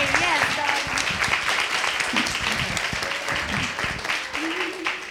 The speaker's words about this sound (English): All right? Clap it up for yourself. Let's go.